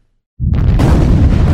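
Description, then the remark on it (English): A fireball explosion sound effect, used as the new opening of the ham radio program 100 Watts and a Wire, erupts out of silence with a sudden deep boom, then swells into a loud, rumbling roar that brightens and crackles as it sustains to the end. “A brand new opening there. A little bit of fireball.”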